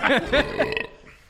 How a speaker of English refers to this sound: Some nice burps, but that's really the only good thing about this. God, the flavor after the burp is brutal.